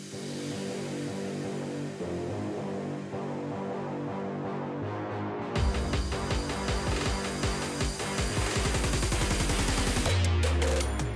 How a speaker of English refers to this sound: You know what that sound means when the engine revs up, the car beeps are on, we are ready to go to work.